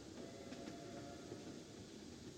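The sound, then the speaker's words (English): A train rolls past with a steady, dense rumble and faint clatter, holding at an even loudness throughout without fading in or out. No voices are heard. “In addition, knowing that these towns liked to get word of what was happening in the outside world, a conductor or flagman occasionally threw a newspaper or two from the train as it passed.”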